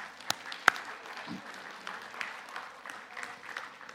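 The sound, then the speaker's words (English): An audience applauds one another, a steady, crackling patter of many hands, opened by a couple of sharp, louder claps, then settling into a fairly soft, even clapping throughout. “Give each other an applause, amen?”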